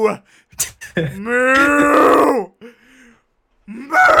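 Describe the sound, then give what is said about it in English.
A cow gives one long, loud moo from a stock audio file that swells and rises in pitch before trailing off, with brief bursts of human voice just before and after it. “and then while she's still a human, she screams, but it's just a cow mooing, and it's just like the dumbest thing ever.”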